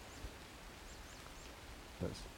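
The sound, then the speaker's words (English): A marsh tit calls faintly in countryside, a few short, high, slurred notes spaced out over a quiet outdoor background, with a brief soft rustle near the end. “Just interested in that bird. I think it was a marsh tip.”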